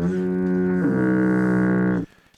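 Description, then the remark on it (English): A loud, sustained Duluth foghorn sound effect, a double blast with a rich, buzzing low tone that steps down in pitch partway through, holding for about two seconds before cutting off abruptly. “Audra, A-U-D-R-A, got the double Duluth foghorn.”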